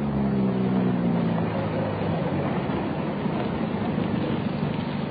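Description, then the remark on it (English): A car engine rumbles loudly, its low hum easing down in the first seconds as the vehicle slows and settles to park on a road, with steady road noise continuing throughout and no voices. “Well, let's park the car here and walk down the road.”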